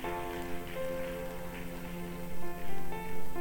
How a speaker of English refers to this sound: Oh, clap for them to come as they. Oh, clap for them. Clap for them. Oh, keep clapping for them.